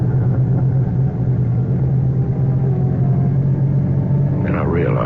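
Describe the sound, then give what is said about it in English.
A car engine drones steadily with a deep, constant rumble, loud throughout, with a brief higher whine rising near the end as the vehicle speeds off. “Quickly, I got into the car. And I got out of there as fast as I could.”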